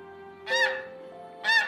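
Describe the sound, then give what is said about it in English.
Two loud, nasal honks from wild geese at a marsh ring out about a second apart, each a short harsh blast over a faint steady background hum. “Some wild ducks and geese come to look at him.”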